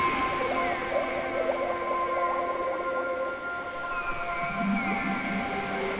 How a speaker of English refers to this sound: Can you hear the sea there now? And the waves on top crashing. Seagulls.